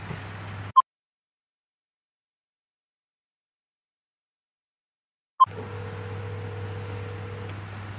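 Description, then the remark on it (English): A single steady ringback tone of an outgoing phone call that goes unanswered plays for about two seconds over a low engine-like hum, preceded by two short electronic blips separated by a stretch of silence. “It's ringing.”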